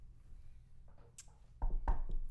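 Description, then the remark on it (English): Two or three firm, hollow knocks land in quick succession on a door after a stretch of quiet, muffled rustling, with no voices. “Before she starts to say something else, there'll be a knock at the door.”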